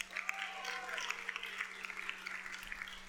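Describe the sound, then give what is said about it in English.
An audience claps steadily throughout as an assistant comes up for a drone demonstration, a dense crackling patter of many hands at even loudness, with a faint whistle-like tone rising briefly early on and a low steady hum beneath. “Round of applause”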